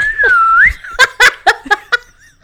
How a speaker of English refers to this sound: The sound effects episode, the Foley episode. Have a slide whistle.